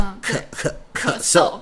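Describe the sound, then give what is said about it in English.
A person coughs several times in quick succession, fairly loud, short harsh bursts that sound deliberate rather than fitful, demonstrating a cough while teaching the Chinese word for cough, with no other talk in between. “咳嗽就是 cough.”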